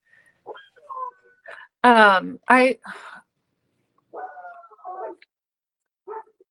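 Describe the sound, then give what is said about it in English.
Two loud dog barks in quick succession, surrounded by softer whines and yips before and after, with brief quiet gaps between the sounds. “Dogs are barking.”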